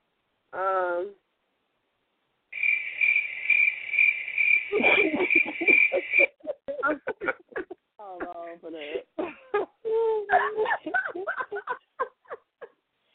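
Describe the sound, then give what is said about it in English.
A shrill, steady cricket chirping sound effect rings out for about four seconds, fairly loud, with voices starting to talk over it before it abruptly stops. “For real, you gonna give me the cricket?”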